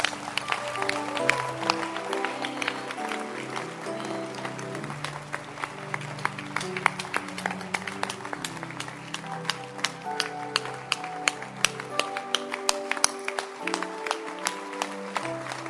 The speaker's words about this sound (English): Clap your hands.